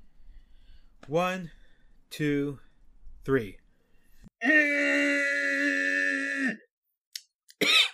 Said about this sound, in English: It's gonna be on 1, 2, 3, then we're gonna scream, okay? Scooching just a little bit away so I don't blow your ears out.